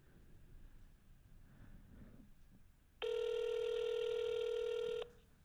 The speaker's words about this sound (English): I hope he answers because he'll be loud and clear. I always think of Crank Anchors every time I hear the phone ringing like that. Jerky Boys.